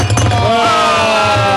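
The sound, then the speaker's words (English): Something drops into a drinking glass with a bright clink, and the glass keeps ringing with a clear tone that slowly fades over a low background rumble. “You're slipping into that glass for me. All the way, there we go.”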